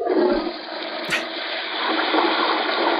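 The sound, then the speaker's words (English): A toilet flush played from a soundboard: a loud rushing gush of water that holds steady for a few seconds, swirling noisily, with a brief clunk of the handle near the start. “What, you never flush, Steph?”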